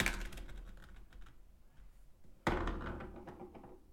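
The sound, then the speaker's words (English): A D120 die clatters and rattles across a table, tapering off into quiet before a metal D20 with bronze filigree lands with a sharp, loud impact and tumbles to a stop. No one speaks. “I own a metal D20 with some insane bronze filigree and a D120 that Aaron got me for Hanukkah. Here, let me roll them for you.”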